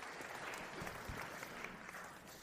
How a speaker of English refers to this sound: Let's give Pastor Dave a round of applause as he comes up.